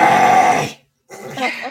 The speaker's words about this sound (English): It sounds like it always sounds to me like he's clearing his throat. Sounds like he's got a fur ball.